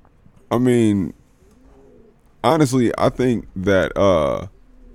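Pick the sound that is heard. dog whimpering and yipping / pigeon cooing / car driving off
pigeon cooing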